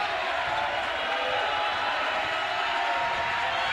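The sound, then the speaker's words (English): A basketball crowd roars and cheers for Stone Memorial in a loud, steady wash of noise that holds without breaks for the whole stretch, with no clear voices speaking over it. “Listen to that crowd for Stone Memorial.”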